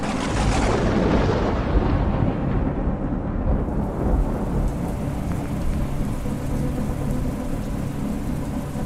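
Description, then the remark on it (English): A steady, dense roar of heavy rain with blustery wind and a deep rumble of thunder swelling at the start, continuing loud and unbroken with no voices, on a cold night as the ship SS Honorary arrives at its destination. “It's a very cold, wet, windy night as the SS Honorary begins to arrive at its destination.”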